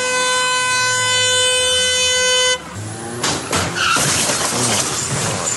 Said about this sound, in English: It shows the Mitsubishi SUV burning rubber while stopping at the traffic lights, and then it hits a car next to it before crashing into the front of the hijab house in the suburb of Greenacre yesterday afternoon.